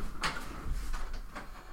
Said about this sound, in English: having some trouble unlocking a door